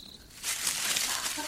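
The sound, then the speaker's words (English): A dry, crackling rustle of leaves and foliage starts after a brief quiet moment and continues steadily, a hissy, scratchy shuffling of a small rabbit moving through bushes. “What's that noise in the bushes?”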